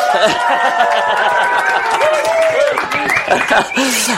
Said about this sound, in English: I am here with ERTE. Yay! Listen to that crowd. And the crowd goes wild.